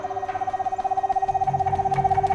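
A screech owl gives a long, even trill, a rapid string of soft hooting pulses on one steady pitch that carries on without a break, clear against a quiet background.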